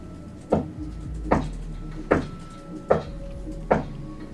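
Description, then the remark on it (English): Five evenly spaced knocks, each a single dull thud about a second apart, moderately loud against a low, steady background rumble with no voices. “Where's that knocking coming from this time?”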